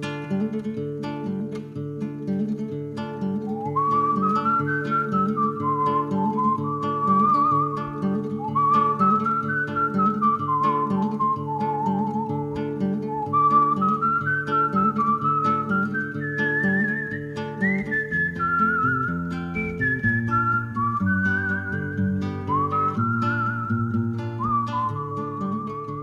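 A clear, sustained whistled melody glides and bends over a steady, rhythmic strummed guitar and low accompaniment, from a Spaghetti Western soundtrack, with no talking.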